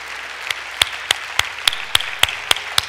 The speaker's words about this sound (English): If you've been here 30 years or more, you come forward. These people should get an applause as they come.